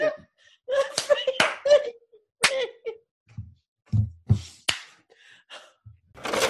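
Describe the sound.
A handful of sharp, separate hand claps snap out at uneven intervals, mixed with murmuring voices and bits of laughter-like vocal sound between them.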